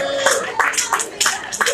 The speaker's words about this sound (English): Let's hear it. Put your hands together for all the nominees.